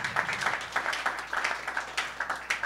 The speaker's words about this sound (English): Just a round of applause for Chemex and a round of applause for that poster, because I think it's definitely going on my wall.